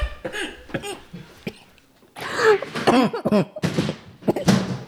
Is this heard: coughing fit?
yes